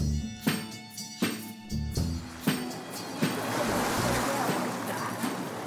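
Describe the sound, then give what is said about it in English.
Outdoor riverside ambience by the River Thames in London, by the Saxon port: a steady wash of lapping water and wind. A few sharp knocks punctuate the first couple of seconds, then the hiss thickens into a continuous rush. “We're right by the Thames.”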